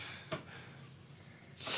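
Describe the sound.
A voice imitates snoring: a short snort, a quiet pause, then a harsh, noisy inhaled rasp that swells louder at the end, with no speech.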